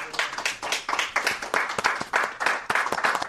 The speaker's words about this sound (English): Yes, clap for yourself, Donald Trump style.